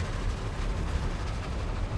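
A steady, low rumbling roar of a train running on rails, continuous and moderately loud throughout, with no voices and no distinct clacks standing out.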